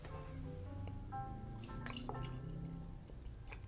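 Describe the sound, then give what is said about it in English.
Eight and Sand blended whiskey being poured into glasses, a steady gurgling trickle with rising, ringing glassy tones as each glass fills, lasting a few seconds with no talking. “So, pouring these.”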